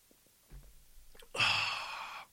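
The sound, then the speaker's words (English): A few soft clicks and a low muffled shuffle, like a quick sip of water, followed by a loud, breathy exhale lasting under a second. No one speaks. “Well, I'm going to take a sip of water because I'm kind of thirsty.”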